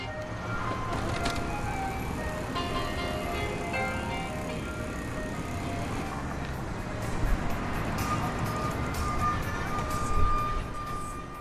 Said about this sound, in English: On 18th Street in Pilsen, on the southwest side of Chicago, the ice cream truck searches out new customers.